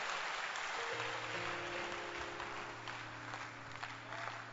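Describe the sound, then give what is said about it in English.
An audience claps steadily for the Lord, a dense wash of many hands applauding together, with a low sustained organ or keyboard tone humming underneath. “Why don't you clap your hands for the Lord and stand to your feet?”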